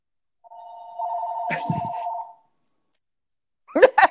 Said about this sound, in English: And the phone rings. You know, that's fine. We'll flow with it.